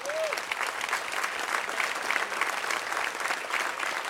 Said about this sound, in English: They deserve applause.